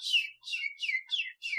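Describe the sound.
A person whistles an imitation of a bird call: five quick, high chirps in a steady rhythm, each sliding downward in pitch, with no talking over them.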